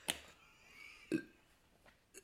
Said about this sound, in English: My friend told me if you breathe in before you burp, it makes it loud. Like, oh my god, it wasn't even that loud.